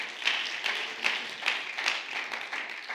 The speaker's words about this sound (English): Clap your hands. Why don't we give God a hand praise today? Come on, give him that hand praise. Hallelujah.